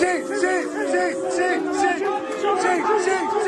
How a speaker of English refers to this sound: it's not exactly difficult, is it, to make out people chanting cheat